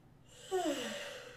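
yawn

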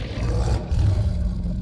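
dinosaur roar

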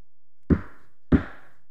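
knocking on a door

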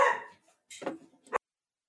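dog barking

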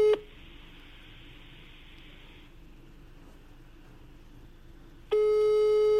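phone call ringing tone

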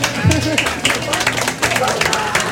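audience applause

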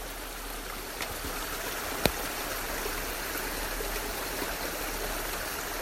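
creek water flowing

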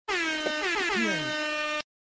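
air horn sound effect

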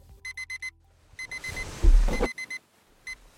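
alarm clock ringing

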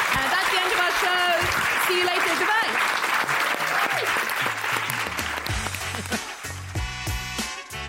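audience whooping

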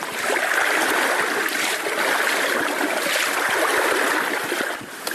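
flowing stream water

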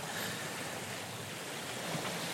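sea waves

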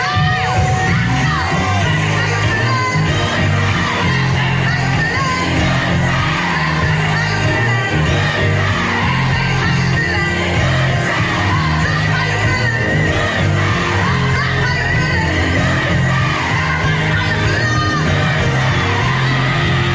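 concert crowd cheering

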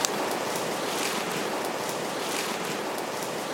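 rushing river water

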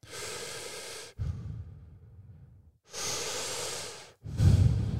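connected breathing

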